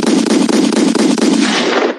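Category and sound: sound effect, gunshot sound effects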